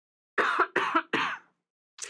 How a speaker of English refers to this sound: There, he just coughed right in the mic.